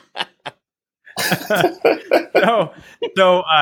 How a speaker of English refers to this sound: Next time, just mute your microphone before you need to clear your throat.